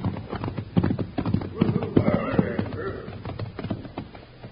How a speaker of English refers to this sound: With the sun out, they'll be riding in. Hey, here come some riders now. And I ain't seen that pinto horse before.